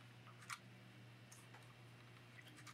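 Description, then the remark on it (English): The BTL clock, a one-minute timer, ticks quietly, with a few soft, sharp clicks spaced unevenly over a low, steady electrical hum. One tick near the start stands out louder than the rest, and no one speaks. “We have a one minute timer, so we fly look through these that, questions.”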